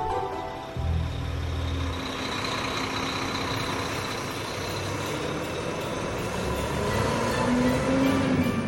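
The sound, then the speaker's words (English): A heavy Salvation Army truck rumbles by, its steady engine drone and road noise filling the scene and swelling slightly louder toward the end, with no voices. “Is that your Auntie Carol driving a Salvation Army truck?”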